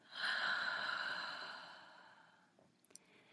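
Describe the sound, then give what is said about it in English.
A long, audible breath pushed out through the mouth, a soft breathy whoosh that slowly fades over about two seconds, followed by a couple of faint clicks, with no talking. “And one more time out of your mouth.”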